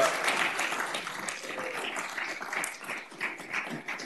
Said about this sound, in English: Next up is item 8, and that's the recognition of outgoing member Mayor Pro Tem Kim Nichols. And so first we can applaud.